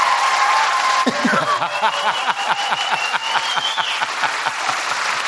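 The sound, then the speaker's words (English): A crowd gives comedian Tig Notaro a standing ovation, clapping steadily, a dense, continuous patter of many hands at an even loudness, with a few faint whoops and cheers mixed in over the top. “Clap for Tig Notaro.”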